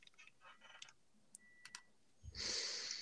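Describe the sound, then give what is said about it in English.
Soft, irregular clicks of typing on a computer keyboard, a few keystrokes in quick bursts, then a louder rushing, rustling noise takes over at the end. “Great, love the keyboard sounds.”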